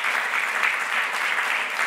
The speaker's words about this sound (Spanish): Dele un fuerte aplauso al Señor, porque es para Él.